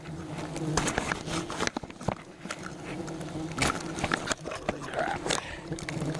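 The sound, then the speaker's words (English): A dense, steady drone of many hornets swarming at their nest, their overlapping buzz filling the air, broken by scattered crackling taps and bursts as the insects surge around the nest. “And then you've got to, like, go out somewhere where there's not bees and get the rest of the bees, or get the rest of the hornets off of you and shit.”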